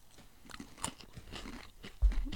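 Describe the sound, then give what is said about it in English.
Someone crunches and chews a crisp snack, with a run of irregular, crackly bites that grow louder, ending in a heavier crunch. No one speaks. “Did you already take a bite?”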